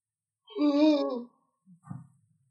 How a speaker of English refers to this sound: I'm so sorry. I had to yawn right then and it happened